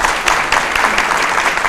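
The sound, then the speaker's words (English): A crowd applauds in a steady, dense wash of clapping, loud and continuous with no voices over it, lasting under two seconds. “Let's give these folks a nice round of applause.”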